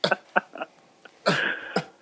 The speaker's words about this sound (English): He wanted all the smoke, but he's just choking on it right now. Yeah, you don't want that smoke now. he took that one puff and he inhaled too much. He's coughing.